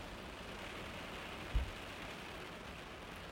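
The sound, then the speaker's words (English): Steady, dense heavy rain pouring down hard, hissing continuously at a low, even level, with one brief dull thump partway through and no voices. “Anyways, hear if you can hear how hard the rain is.”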